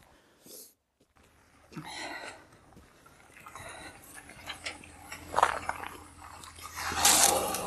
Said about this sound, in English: God, if I knew there was going to be this much darn activity in this parking lot. He's scraping. What are you even plowing? There's nothing to plow. You're just interrupting my monologue.